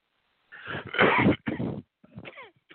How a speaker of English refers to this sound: Sorry, I'm coughing.